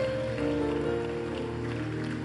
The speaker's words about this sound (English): Come on, church. Let's keep clapping. Let's keep clapping. Glory to God.